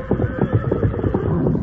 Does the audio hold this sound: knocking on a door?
no